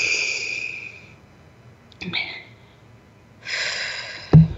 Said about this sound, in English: Take a deep breath in through your nose. See how big you can make your belly. A little bigger. And then out through your mouth. Out through your mouth like through a straw.